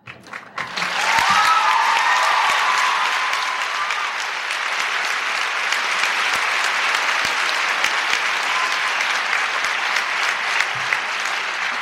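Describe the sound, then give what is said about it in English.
A large audience bursts into applause that swells within a second and holds steady, a dense, continuous wash of clapping lasting about ten seconds, with a brief voice or cheer near the start. “I'm not going to tell George you clap more for Ferris than you clap for George.”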